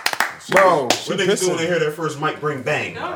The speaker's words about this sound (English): Clap